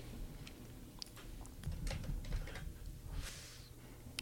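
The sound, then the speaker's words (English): Fairly quiet, irregular clicking of keys being typed on a computer keyboard, a quick scattered patter of taps over a low background rumble, with no one speaking. “When you do this, you need to put the keyboard like closer to the mic. That way it's like... Oh, you'll probably still hear it.”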